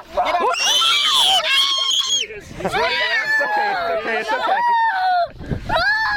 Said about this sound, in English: It's okay. Stop screaming about a dang frog. I'm the most excited one.